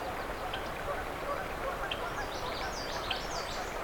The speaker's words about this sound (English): Okay, yeah, Canada geese are what I'm hearing in the distance.